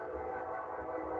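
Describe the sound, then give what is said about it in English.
A steady, sustained train whistle sound effect blares loudly for about a second, holding a constant chord-like tone with a faint rumble underneath and no talking, marking the show's hype train graphic for Gardner Minshew. “That's our unrelenting hype train graphic. It doesn't stop for you. It just keeps going and going and going.”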